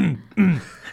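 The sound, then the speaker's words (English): A man clears his throat twice in quick succession, a voiced, gravelly ahem with a falling pitch, fairly loud, with no other talking around it. “He's your dad, like clearing his throat a lot.”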